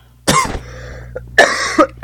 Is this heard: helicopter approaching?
no